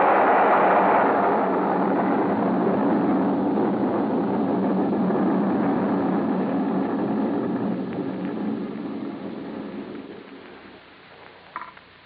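A laboratory building explodes in a loud, sustained roar of rumbling, crashing debris that slowly fades out over about ten seconds, with a faint clatter near the end.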